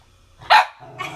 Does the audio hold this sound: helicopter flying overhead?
no